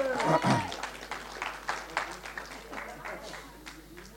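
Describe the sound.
A small audience claps for a few seconds, an uneven patter of hands at moderate volume, with a brief bit of voice at the very start.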